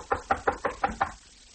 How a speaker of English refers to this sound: Here's his room. I'll knock.